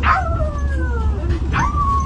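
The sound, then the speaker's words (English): A woman in San Francisco imitates a dog, barking at a man who is listening to music on his phone, letting out two loud, yelping bark-howls that slide downward in pitch, with a steady low rumble of background noise underneath. “She just barks at him because he's listening to music on his phone.”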